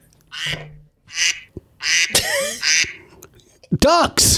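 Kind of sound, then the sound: animal, ducks quacking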